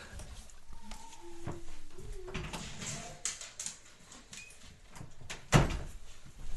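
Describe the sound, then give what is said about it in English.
A dog named Max whines at a door with a few thin, high whimpers, followed by the clatter of the door being handled and opened to let him in, ending in a solid knock or thud. No one speaks. “My dog was crying at the door, and if I don't let him in, he's going to freak out.”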